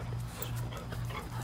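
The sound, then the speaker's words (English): A dog pants steadily, with soft, breathy rhythmic huffs and a faint whimpering edge, over a low steady hum in the background. “Well, there's the other dog.”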